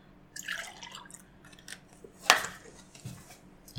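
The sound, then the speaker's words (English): Milk being poured, heard as soft irregular splashes and drips, with one sharp ringing clink of a glass or dish partway through and a few quieter knocks afterward. “Alright, pour your milk, pour your milk.”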